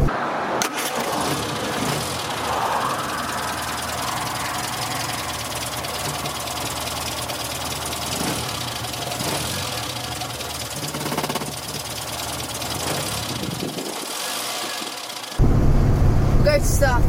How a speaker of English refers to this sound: And luckily we hadn't started the car the previous time, so we're reasonably happy now, and go to start it again.